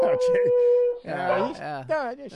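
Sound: dog howling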